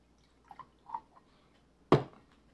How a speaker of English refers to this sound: I'll pour you some.